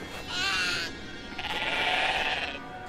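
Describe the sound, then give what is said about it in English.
A goat bleats twice, a short wavering call followed by a longer, drawn-out one, loud with no talking. “Gilly goats.”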